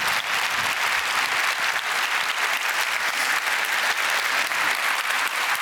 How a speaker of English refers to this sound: Thanks very much, James Glick. Round of applause. Thank you.